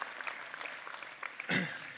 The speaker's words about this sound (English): Let's give them a round of applause as they come up here right now.